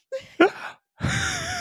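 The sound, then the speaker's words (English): One voice imitates a crowd gasping: a couple of quick, sharp intakes of breath, then a longer drawn-out breathy gasp with a rising tone, fairly loud. “The crowd gasps.”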